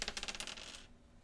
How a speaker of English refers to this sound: I'm going to roll the dice again.